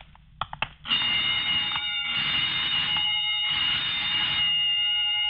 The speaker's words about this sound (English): What's that? Oh, just testing the burglar alarm, I guess.